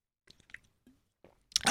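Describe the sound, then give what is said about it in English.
Someone takes a quick sip of water: a few faint wet mouth clicks, then a brief, loud slurping gulp right at the end, with no talking. “Hang on, I need to get a drink of water real quick.”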